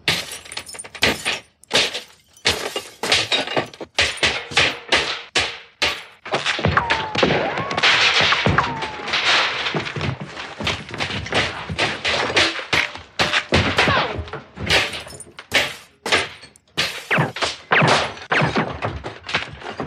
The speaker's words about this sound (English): But here in this movie, having that same violence thrust upon you from guns with silencers, so you just hear the ping when walls are punctured, or you just hear glass gradually cracking apart, well, that can be unnerving.